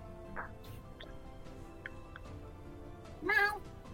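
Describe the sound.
A person imitates a cat's meow with one short, fairly loud, rising-and-falling mew near the end, over a quiet background with a few faint ticks earlier.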